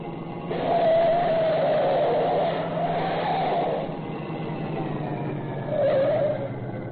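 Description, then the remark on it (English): A car engine runs steadily, its whine rising and dipping as the car turns quickly into the next street, with a brief surge near the end. “You will turn quickly into the next street.”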